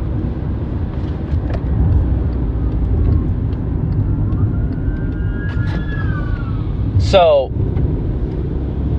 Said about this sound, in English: sorry, a car, fire truck just went by.